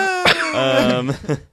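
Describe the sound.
A person coughs, with a sharp burst at the start, a strained, voiced throaty sound in between, and a second short cough near the end.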